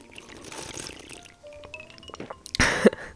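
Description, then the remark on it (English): Someone takes a gulp of spiked tea: faint wet liquid sounds, then a sudden loud swallowing burst near the end, with no talking. “More of a gulp, sorry.”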